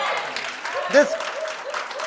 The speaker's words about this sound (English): Come on, you can clap better than that.